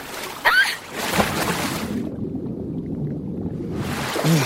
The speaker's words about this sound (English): And then the characters dip underwater and you hear it like glug and it's wild. It's really cool.